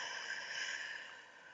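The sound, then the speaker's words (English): A single long, airy breath drawn slowly and steadily during a guided breathing exercise with eyes closed, fairly soft, with no talking and nothing else around it. “This type of breathing helps bring you present.”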